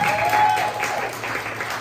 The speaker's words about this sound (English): I have one more applause, one more round.